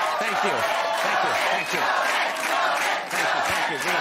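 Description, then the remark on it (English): A large audience cheers and yells continuously, a dense roar of many voices with scattered higher shouts rising out of it, loud and sustained throughout with no pauses. “I don't know why you people are cheering.”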